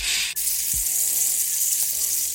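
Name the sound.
sizzling frying sound effect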